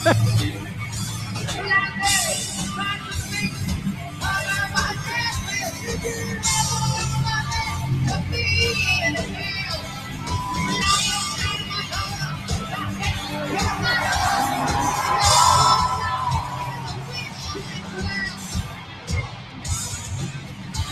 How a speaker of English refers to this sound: He's already starting to let the crowd sing, though.